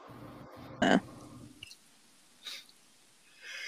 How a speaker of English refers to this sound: Sneeze. What was that? That was a sneeze. That was amazing. I loved it. What was that? Okay. I've never heard you sneeze.